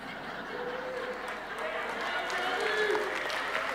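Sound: audience applause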